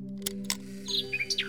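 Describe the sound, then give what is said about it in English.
A mechanical nightingale on a clock chirps in a quick run of bright, whistly tweets, preceded by two sharp clicks, all over a steady low mechanical hum. No one speaks. “Cool clock. Look at that little mechanical bird. It's a nightingale, actually.”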